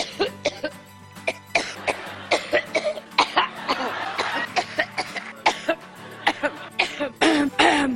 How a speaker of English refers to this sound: Trump was pounding away at the message, and at a time when the exhaustion of the campaign was clearly beginning to wear on Hillary, by the beginning of 2016, the uncontrollable coughing fits were back.